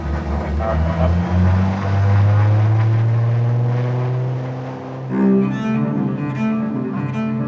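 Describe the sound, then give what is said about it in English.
Propellers of a small twin-engine airplane, heard from the passenger side inside the plane, drone steadily and loudly, a low throbbing hum with shifting pitch that dips briefly before swelling again. “I'm sitting on the passenger side of a small twin-engine airplane.”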